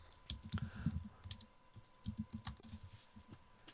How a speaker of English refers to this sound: And of course, I have three tabs on this already on my computer. Listen, I'm typing it in now.